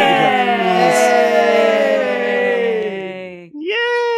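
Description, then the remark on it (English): Voices imitate a drum roll to announce a special guest, with a sustained, rolling vocal trill: steady rapid pulses over a loud voiced tone that slowly sinks in pitch, breaking off briefly before another voice rises. “Yeah, I didn't contribute to the drums because there was so much interference with all these different drums.”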